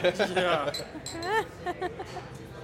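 Glasses clink together in a toast, a few short bright taps mixed in among people chatting and exclaiming.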